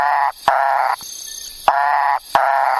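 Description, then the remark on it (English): A Macaya burrowing frog calls in loud, nasal, buzzy notes, four sustained honks with short gaps, harsh and harmonic-rich, alone without any talking. “Okay, yeah, we also found the Macaya burrowing frog.”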